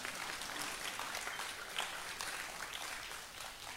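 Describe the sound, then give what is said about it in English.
An audience gives God a hand clap in the morning, clapping together in a dense, steady burst of applause, many hands overlapping into a bright, continuous patter with no talking over it. “Give God a hand clap this morning.”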